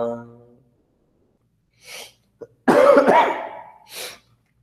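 A sung tone of the Guru mantra chant fades out, then a breathy intake precedes one loud, harsh cough burst, followed by a softer rasping exhale in otherwise quiet surroundings.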